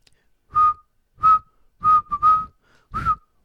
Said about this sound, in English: I need a bit of introduction, so maybe a bit of a whistling beat.